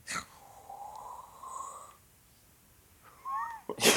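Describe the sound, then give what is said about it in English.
Someone imitates with their mouth Jack sniffing a note scented with Audrey's perfume: a sharp breathy snort opens and closes it, with a drawn-out nasal, hum-like tone and a brief warbling squeak in between. No words are spoken. “What was the noise you were doing there? Sniffing the note.”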